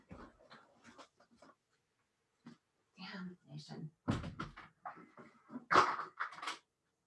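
A door is opened, with a few sharp clunks and rattles amid scattered rustling and handling noises, including a louder knock near the end.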